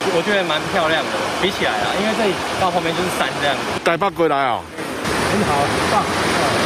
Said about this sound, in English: The water is overflowing here at Husan Reservoir in Yunling. As it courses over the edge of this weir, an arc-shaped waterfall is created.